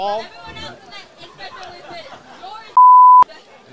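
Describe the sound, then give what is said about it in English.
Overlapping voices chatter, then a loud, steady censor bleep covering profanity cuts in for about half a second near the end, a single flat tone standing out sharply after the talk. “We can bleep that out. Beep, beep.”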